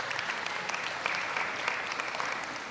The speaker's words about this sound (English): If you wouldn't mind, give another round of applause for our moms in the room.